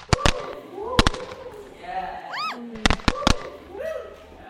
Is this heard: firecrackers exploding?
yes